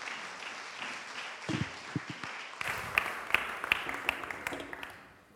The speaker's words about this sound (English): Thank you, guys. Let's give Riggs a massive round of applause.